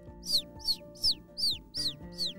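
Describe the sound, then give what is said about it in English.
A bird at a window chirps six times in a quick, steady rhythm, each call a bright, high downward-sliding note, clear over a low background hum. “It's a bird. It's like she's trying to come in.”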